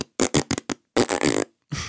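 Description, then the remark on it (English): A rapid string of short, sputtering fart noises, four quick blasts followed by a longer buzzing, rippling one and a final low trailing toot, loud with no talking. “Yeah, it could be a fart soundtrack.”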